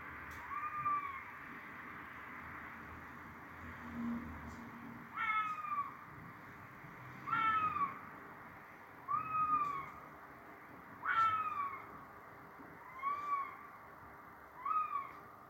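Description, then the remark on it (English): A red fox calls repeatedly at night over wintry farmland in Salisbury, UK, recorded from a bedroom window: a series of about eight eerie, wavering yelps spaced a second or two apart, carrying clearly over a low, steady background rumble. “And secondly, this will be a noise that's familiar to most of us in the UK, sound of a fox.”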